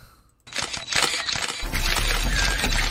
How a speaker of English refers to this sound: It's picture time! So many camera shots. It's too many. It's paparazzi.